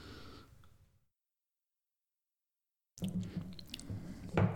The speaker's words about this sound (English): My next sip is going to be the Evan Williams Single Barrel.